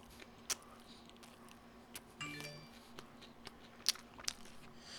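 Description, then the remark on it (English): Quiet chewing with sharp, wet lip smacks popping out every second or so, irregular and intimate, as a man eats a sandwich, chewing with his lips. No one speaks. “You can hear him chew with his lips.”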